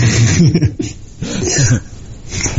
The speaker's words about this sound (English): I love how you clear your throat as if it's my fault.